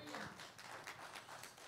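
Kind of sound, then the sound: crowd, audience clapping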